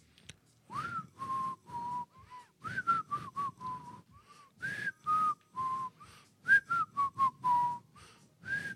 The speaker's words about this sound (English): New whistles. New types of whistles every week.